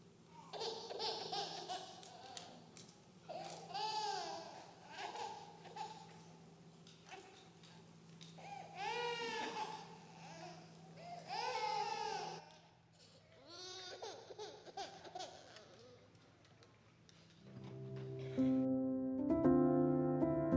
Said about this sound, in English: and where normally you would only hear the sounds of animals, the silent night was pierced with the sound of a newborn baby.